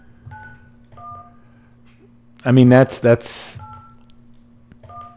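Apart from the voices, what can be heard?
telephone number being dialed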